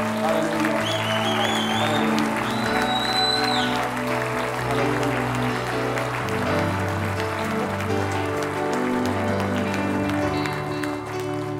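A church audience claps their hands in rejoicing during a morning service. The claps form a dense, continuous patter that stays loud throughout, blended with sustained musical tones underneath.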